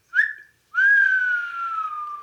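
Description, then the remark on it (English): A professional bird caller whistles an imitation of a bird call: a short rising chirp, a brief pause, then a long, steady whistle that slowly slides downward in pitch, fairly loud with no talking. “Let's hear your best bird call.”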